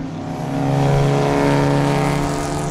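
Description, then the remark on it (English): Loud, continuous engines of beat-up race cars drone with a buzzing harmonic whine, holding steady for a few seconds just after the race has started. No voices are heard. “So they've officially started and the smell is atrocious. It really is. Wow. Apparently, busted-ass cars smell worse than normal racing cars.”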